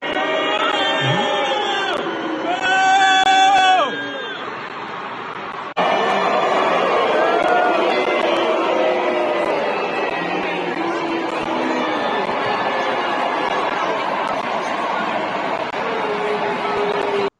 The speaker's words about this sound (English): So that's at Nats Field. That's people booing as Joe Biden wanders into the congressional baseball game